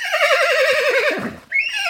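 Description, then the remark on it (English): A horse whinnies loudly, its voice quavering in a long wavering call, then breaks into a second, higher-pitched neigh that trails off. No talking. “there is an animal to thank. A carting horse named Jim”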